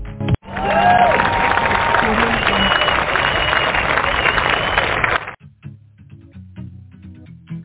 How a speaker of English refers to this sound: And let's welcome him with a wonderful round of applause.